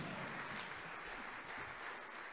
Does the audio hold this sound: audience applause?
yes